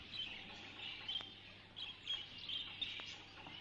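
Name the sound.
bird chirping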